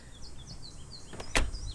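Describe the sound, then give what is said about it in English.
A woman opens her front door on Avenue Russell in Mount Royal at 6 a.m. on a hot morning, about 30 degrees, to let her dog outside: a sharp latch click and a brief rattle near the end, while birds chirp steadily outdoors. “On Avenue Russell in Mount Royal, a woman opens her door to let her dog outside.”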